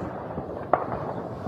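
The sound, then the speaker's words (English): A single sharp crack of gunfire in Khartoum, Sudan, during a war, stands out against a steady rumbling background of outdoor noise. No one speaks. “And the constant crackle of gunfire.”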